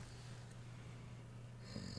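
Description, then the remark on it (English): A calm female dog snores softly with a low, steady rumbling drone that runs unbroken through the moment, quiet, with no one speaking. “I'm so sorry if you can hear our dog snoring.”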